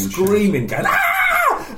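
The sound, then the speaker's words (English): A voice imitates a high-pitched squealing scream at the top of the lungs, a loud sustained "ah" that starts lower, climbs sharply in pitch and holds a shrill tone before cutting off. “Just screaming, going ah!”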